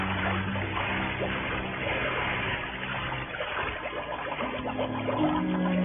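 A diver wearing a scuba rig with air tank, mask and flippers slips over the side of a boat into the water at the edge of a coral outcropping, followed by a steady, muffled churning and bubbling of water that continues for several seconds, with no voices.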